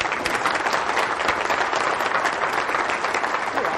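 A crowd applauds steadily, dense overlapping claps forming a continuous, even wash of noise that holds at a fairly loud level for the whole stretch without pausing.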